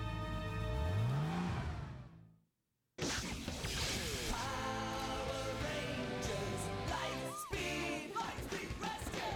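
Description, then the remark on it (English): A car engine revs up loudly with a rising whine, cuts off into a brief silence, then returns as a dense, roaring rumble of motor noise that carries on steadily. “Does Zane know she stole his car?”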